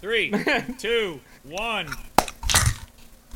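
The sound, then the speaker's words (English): A sharp crunch of biting into a Cheez-It cracker, done instead of a clap to sync audio, quickly followed by a second, longer crackly crunch, coming right after some voiced, sing-song vocal sounds. “I'm turning my mic up because instead of clapping for the sync audio, I'm going to bite into a Cheez-It in sync.”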